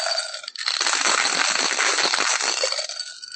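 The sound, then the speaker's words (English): Dice rattle and clatter continuously inside a hard cup, a dense, clattering shake lasting a few seconds, loud and bright with no voices. “It was the only cup I had at my fingertips to roll in, and I'm finding I get better results.”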